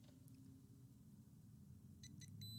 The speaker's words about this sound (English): That's what my phone sounds like now. What is that?